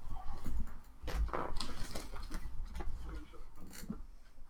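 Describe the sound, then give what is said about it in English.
Light, irregular tapping and pattering of small paws as a kitten scampers around, with soft scattered ticks and thumps over a low background rumble. “So the kitten is just kind of running around right now.”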